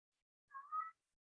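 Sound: cat meowing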